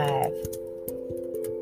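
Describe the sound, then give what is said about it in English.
Irregular light taps of typing a scripture into a device to read it aloud, several quick clicks spaced unevenly over a steady low electrical hum. “If you hear some, you know, noise, I'm typing it in so I can read it to you.”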